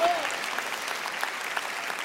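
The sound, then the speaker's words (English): Steady audience applause, many hands clapping in a dense, even patter that holds at a constant level throughout without pauses or swells. “Oh, and then the audience clapped.”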